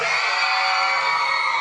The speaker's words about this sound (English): After three, then, if you're having a good time, I want to hear you scream. One, two, three!